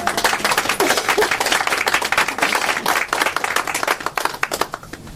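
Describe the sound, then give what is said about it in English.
An audience at a book launch event at Novel Idea Bookstore applauds the store's hosts, many hands clapping in a dense, crackling wash that holds steady for several seconds, then thins out toward the end. “Let's give them a hand as well.”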